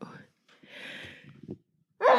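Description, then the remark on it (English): After a brief bit of talk, a long airy intake of breath leads into a sudden, loud, hissing sneeze burst that cuts off at the very end. “Bless you.”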